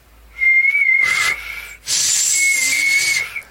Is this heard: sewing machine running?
no